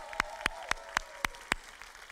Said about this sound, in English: So you know what I want us to do? Let's turn around and look at them and clap our hands to them and tell them how much we appreciate them.